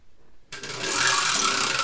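After a brief silence, the prize wheel of the show Wheel of What, used to pick topics, starts spinning with a steady, rapid mechanical rattle of clicks that continues at an even, fairly loud level to the end, with no voices.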